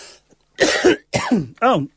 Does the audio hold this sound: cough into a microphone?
yes